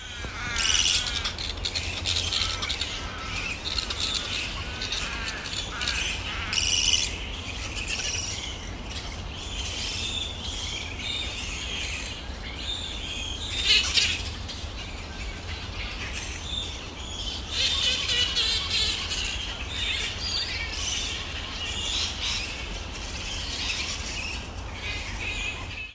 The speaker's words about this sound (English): I'm going to play you the sound of bats, and it's not the bats in the article because those were micro bats, but these are the flying foxes.